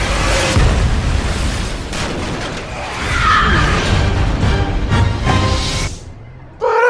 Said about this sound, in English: Mission Impossible 3. Love it. Once again, Tom Cruise getting thrown away from an explosion by an explosion.